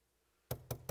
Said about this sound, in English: Started to pound on the bathroom door for my wife